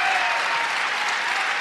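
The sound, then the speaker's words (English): Loud, sustained applause from a large crowd giving a standing ovation to Australian Christian Lobby head Martin Isles, a dense steady wash of clapping with no breaks. “Martin Isles can pull a crowd wherever he goes, often with a standing ovation.”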